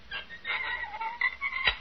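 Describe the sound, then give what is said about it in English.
A vault door swings open with a drawn-out, wavering hinge squeak, followed by a short sharp knock or latch click near the end. No one speaks. “I just open the door. Like this.”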